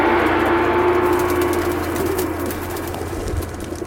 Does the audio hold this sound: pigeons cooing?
yes